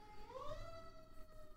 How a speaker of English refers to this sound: Fire engines. Correct. Yeah, I was hoping that it wouldn't pick up, but it's right by my window.